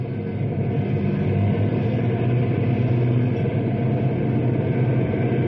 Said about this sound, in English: Hey, here come two prison trucks right now.